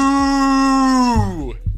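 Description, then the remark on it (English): A person imitates a cow with one long, loud moo, holding a steady droning note before the pitch slides downward and trails off, followed by a brief low rumble. “Give him one. Moo!”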